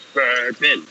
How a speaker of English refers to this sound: Burpin.